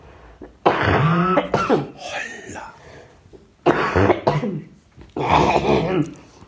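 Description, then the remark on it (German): Someone clears their throat and coughs into their elbow in three rough, fairly loud bursts, with short pauses between them and no talking. “Entschuldigung, ich muss kurz in die Abhustarm husten.”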